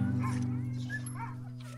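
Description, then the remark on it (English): A team of sled dogs bark and yip in a few quick, excited bursts in winter, over a steady low droning hum that runs underneath the whole time. “In the winter, I ran a team of sled dogs, anything to be outside and working with animals.”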